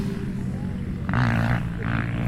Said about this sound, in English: Oh, look, there's a drone. Yeah, they got the drone going. Drone's back up.